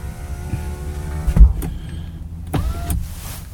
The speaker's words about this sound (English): And hang on a second here. I'm going to roll my window up. It's starting to rain a little bit.